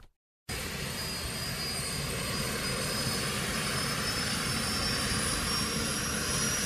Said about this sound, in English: That is the deafening sound of the majestic Bloodhound supersonic car. It's the world's fastest straight-line car, powered by a state-of-the-art EJ200 Eurofighter Typhoon jet engine.